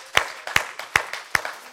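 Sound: audience applause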